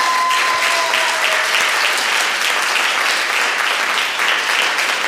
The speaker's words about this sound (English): So I'd rather be happy. Give a big round of applause just for that.